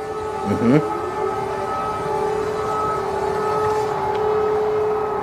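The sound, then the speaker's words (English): A loud air raid siren in Kyiv wails steadily, its sustained tones drawn out over constant low rumbling background noise, with a brief wavering sound near the start. “What is the air raid siren?”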